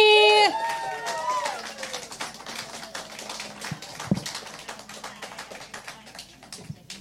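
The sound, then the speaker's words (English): An audience at a live show breaks into steady applause as a comic is welcomed to the stage, a dense rush of many hands clapping that stays fairly loud for several seconds before thinning out slightly; a brief tonal sound rings at the very start. “Clapping.”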